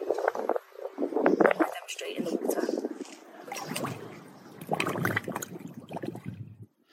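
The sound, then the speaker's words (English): Someone hums with their mouth closed tight, as practice for breathing while swimming, a buzzy, sputtering tone that swells and breaks into bursts for several seconds, with no words spoken. “It can be quite difficult to start with, but a really good way to practice is closing your mouth really tight and humming.”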